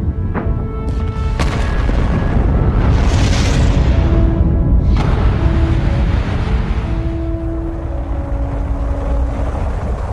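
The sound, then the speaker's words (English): A loud, steady rocket engine roar of a launch carrying the first crew to Mars rumbles without a break for about ten seconds, thick with deep low rumble and crackle, with a few sharp bursts near the start and a faint whine running through it. “10, 9, ignition sequence start. 6, 5, 4, 3, 2, 1, 0, all engine running.”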